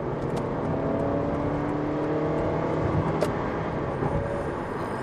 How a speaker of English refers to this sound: Just like doing that. I just had to accelerate into the traffic. Now, just pulling down to the speed limit